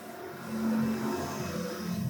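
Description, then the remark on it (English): A truck tractor's heavy engine rumbles steadily outside in Indiana, a low droning hum that swells slightly as it drives by, with no voices over it. “I think there's a truck tractor. Drove by.”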